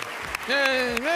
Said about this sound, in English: I'm always fascinated by how applause happens in these public settings. But the governor giving his campaign rally speech for the Iowa caucus. I'm sorry, the State of the State address yesterday.